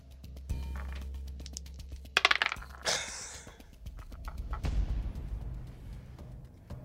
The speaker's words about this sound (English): This moment right now, having to listen to these dice rattle around in that box.